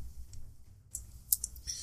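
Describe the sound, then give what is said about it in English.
Four small four-sided dice (d4s) clatter across a hard surface, making a quick cluster of sharp, bright clicks, fairly quiet, with no one speaking. “So that's going to be 4d4. Do I have... of course I have that many d4s.”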